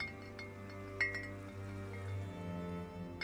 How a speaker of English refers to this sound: I can hear the bottles on the breeze now, every day. I hung them all up on the big tree outside my kitchen window, and they sparkle and shimmer in the sun. I walk through them sometimes, tapping the glass and hearing them chime against each other.